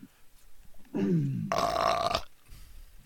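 A loud, rough throat clearing heard through a headset: a low, voiced groan that slides downward, then a harsh, raspy burst of air lasting under a second, with quiet before and after and no talking.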